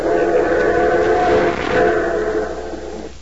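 A train pulling into the station rumbles steadily with a whistle-like tone riding over it, the sound holding loud before easing slightly as it slows near the end.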